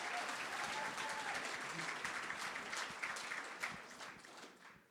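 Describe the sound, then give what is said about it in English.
Sustained applause from an audience for filmmakers Justin Pemberton and Matthew Metcalf, a dense wash of many hands clapping at steady volume before tapering off slightly at the end. “Give them a big round of applause for...”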